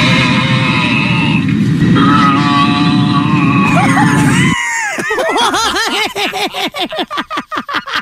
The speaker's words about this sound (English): intercom hacked by a person who grunted the entire trip. What? How do you hack an intercom system? That is a great question. But here's, you want some audio? Yeah, I do. All right, here's what it sounded like for the passengers on this flight.